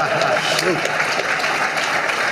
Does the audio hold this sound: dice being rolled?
no